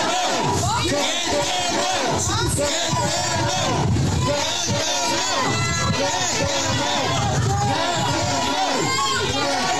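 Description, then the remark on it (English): A large outdoor protest crowd outside the Travelodge Hotel in Ballymun roars with sustained cheering and overlapping shouts, loud and dense throughout, with many voices yelling at once in a continuous wall of noise. “Now, again, I will stress that that protest was held, that particular audio that you're after hearing was outside the Travelodge Hotel in Ballymun, where for the last 2 years, a number of asylum seeker families, males, females, kids, have been housed”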